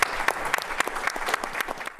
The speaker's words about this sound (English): and thank you, you all. For being here. Again, applause. Thank you so much. Thank you.